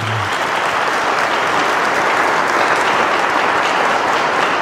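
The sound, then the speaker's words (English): Steady, loud applause from an audience after news of a balanced budget with no cuts to ministries or staff, a dense wash of many hands clapping that holds evenly for several seconds without voices breaking through. “You can clap for that too, yeah.”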